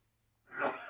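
A single sneeze bursts out after a brief quiet moment, a short breathy blast that swells and then trails off, fairly soft, with no talking around it.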